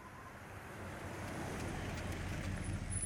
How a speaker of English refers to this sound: A sad smile crossed my lips as I saw Joyce's car pull slowly into the driveway.